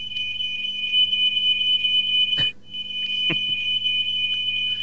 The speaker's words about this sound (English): Oh, my end. Smoke alarm's gone off. I was going to say, is that a smoke alarm? Yeah. And I think someone's been burnt something, probably.